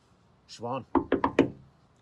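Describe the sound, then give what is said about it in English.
A short burst of voice, then four quick, firm knocks on a locked door whose lock has been changed, in a steady rhythm and fairly loud, as someone outside demands to be let in, followed by quiet. “Open the door”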